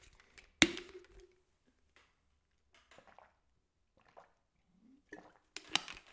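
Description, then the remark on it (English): A quiet sip of coffee: a sharp knock of the cup early on, soft wet mouth sounds and a faint slurp near the end, with no talking. “This is me taking a sip, maybe taking a breath too.”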